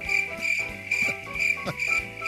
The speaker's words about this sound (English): I think the crickets might be my favorite one.